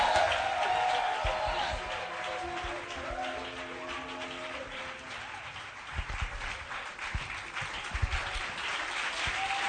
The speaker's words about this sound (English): Are you clapping? I can hear your celebration.